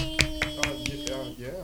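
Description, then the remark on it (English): Five sharp hand claps in a steady, evenly spaced rhythm ring out over a sustained tonal hum, followed by a brief voice as the clapping stops. The hosts of Tea in the Shade Radio are clapping to welcome a guest who has just arrived. “We clap for you.”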